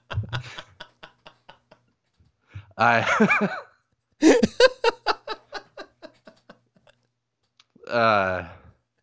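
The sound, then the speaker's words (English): Computer keyboard keys clatter in two rapid bursts of hard plastic clicks as the keyboard breaks, each burst speeding up and fading out, with brief laughing voice sounds between and after them. “I think I just broke my keyboard.”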